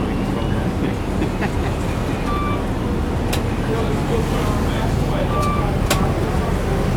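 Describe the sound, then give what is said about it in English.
A steady rumble of an electric-powered bus in street traffic, with faint whining tones and a couple of sharp clicks over the continuous drone. “Electric powered bus. It can't be fully electric. It's a dark bus, I guess.”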